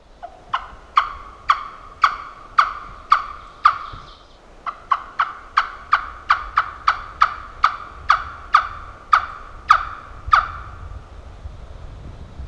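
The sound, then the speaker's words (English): A turkey gobbling call in the woods while turkey hunting: a long, steady series of about twenty sharp, clucking yelps, evenly spaced with one brief pause, loud, with no talking. “This is kind of up and down for turkey hunting. There are turkeys here, but it's tough, man.”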